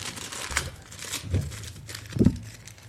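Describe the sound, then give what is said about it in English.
Paper being quickly folded and creased into a paper airplane, with soft crinkling and a few sharper rustling presses spaced irregularly over a few seconds, no voices. “Okay, the first to make the plane was 38 seconds.”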